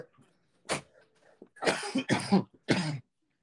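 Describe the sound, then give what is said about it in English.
A single sharp cough, then a quick burst of three more harsh coughs in close succession, fairly loud, with faint background murmur between them. “I also want to apologize in advance again for the coughing.”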